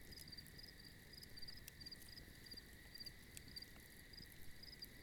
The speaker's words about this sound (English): and then allows you to just completely and totally relax to the sounds of the fire and the evening crickets, allowing you to drift off into a wonderful sleep.